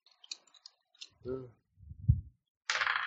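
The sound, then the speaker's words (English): Dice, rolled as a 7k3 roll totalling 15, rattle and clatter across a table in a quick burst of small, sharp clicks, followed by a brief voiced murmur, a low thud and a short rush of hissing noise. “Okay, I'm going to burn a drama die on that because my dice decided to fuck me.”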